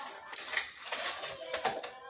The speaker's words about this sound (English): I mean, I'm over here just rolling my dice. That's right. I'm rolling my dice, yeah.